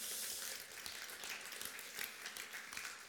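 A crowd applauds steadily as the speaker invites his wife up to join him, many hands clapping in a dense, crackling wash that holds fairly even throughout without any voices.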